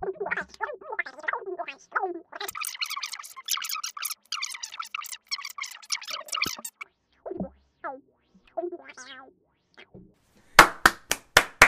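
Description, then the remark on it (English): Five sharp, loud hand claps ring out in a quick, even burst at the end, following earlier wordless vocal sounds and a stretch of rapid crackling clicks. “Why have you clapped?”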